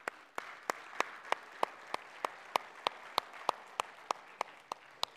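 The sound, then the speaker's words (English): A church audience applauds in welcome in a steady wash of many hands, with one set of sharp, evenly spaced claps standing out above the crowd at a brisk rhythm. No one speaks. “As we welcome them with applause, I ask the elders to come on up and greet them too.”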